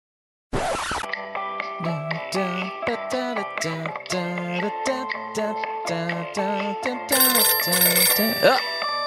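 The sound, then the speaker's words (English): The temp phone rings with a loud, melodic ringtone, a bright electronic tune of quick repeated notes that plays continuously after a brief noisy click at the start, with no one talking. “It's the temp phone. Everybody be quiet.”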